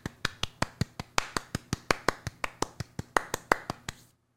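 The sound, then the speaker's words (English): An audience claps in steady unison in response to a speaker's prompt, about nineteen sharp, even claps at a quick, regular beat, with no voices, then stops abruptly. “Clap if you think Carmen is stealing from me.”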